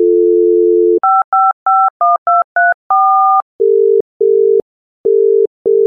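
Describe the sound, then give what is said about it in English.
A steady telephone dial tone gives way to a quick run of two-tone dialing beeps, then a repeating on-off busy-style tone pulses in short regular bursts, loud and clear with no voices, on an Anchor phone line before a voicemail. “Let's head over to the Anchor phone lines and see who called in.”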